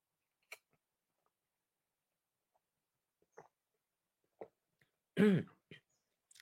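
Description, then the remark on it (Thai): Someone takes a quick sip of water: scattered soft clicks and taps, a short throaty swallow sound around the middle-end, then a few more faint clicks in otherwise quiet surroundings. “ดื่มน้ำนิดนึงนะครับ”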